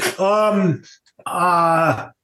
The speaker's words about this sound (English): Yawn.